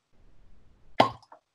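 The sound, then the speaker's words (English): A cork stopper pops out of a tequila bottle, whose cap bears an Aztec calendar design, with one crisp, hollow plop, fairly loud, after a moment of faint rustling, followed by a soft little tap. “I like the way it sounds when I open a bottle.”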